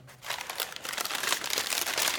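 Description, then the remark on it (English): Continuous crinkling and rustling of a plain paper bag as gifts are packed into it in a store, a dense crackly texture lasting a couple of seconds with no voices. “A plain paper bag will be fine.”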